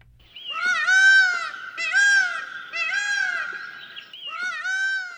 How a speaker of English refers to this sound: the peacock. You'll easily recognize these magnificent birds on sight, but are you familiar with their song?